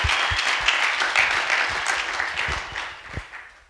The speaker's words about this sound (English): That's it. Give a clap. Give a clap to God.